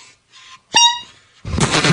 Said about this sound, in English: I just broke my clown horn. Yeah. Can you do a sad honk on that?